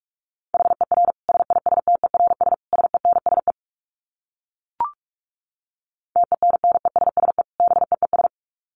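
Fast Morse code at about 45 words per minute: a steady mid-pitched tone keyed into rapid dits and dahs, broken by a pause with one sharp click before the tones resume.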